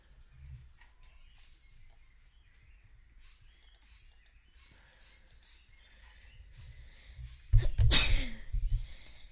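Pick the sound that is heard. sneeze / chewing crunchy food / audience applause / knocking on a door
sneeze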